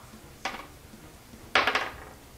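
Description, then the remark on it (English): A d20 die, rolled for an attack, clatters across a hard tabletop in two bursts: a short rattle, then a louder run of quick bouncing clicks that settles. No one speaks. “Just roll an attack first, d20.”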